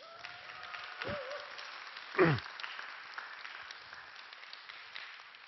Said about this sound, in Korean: 제가 시한 구절을 외웠습니다. 보통 시를 낭독하면 박수들을 치거든요.